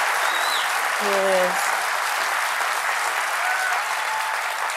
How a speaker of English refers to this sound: And so the audience applauds, presumably because a sign lit up telling them to applaud.